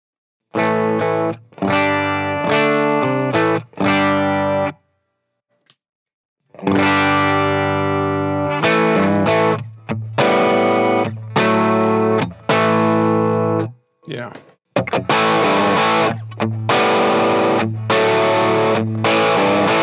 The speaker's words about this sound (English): So here's just the direct amp sound.